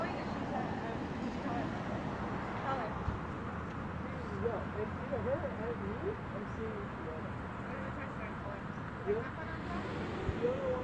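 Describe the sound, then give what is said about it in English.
Steady ambience of a main street with a low rumble of cars passing continuously in the background, mixed with indistinct voices of people talking and occasional faint bird chirps. “This is a main street. So you're hearing cars in the background.”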